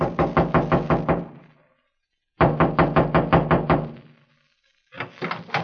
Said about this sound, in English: Another trailer stood across the clearing from Freddy's body about 100 yards away. I walked through the clearing and knocked on the door.